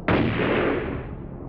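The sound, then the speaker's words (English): A single loud gunshot cracks sharply outside a house at the start, then its heavy boom rolls out and slowly decays over the next second and a half. No voices, just the one shot and its fading reverberation. “Both Amara and his mother were held back as the ruckus was taken outside and ceased with the crack of a gunshot.”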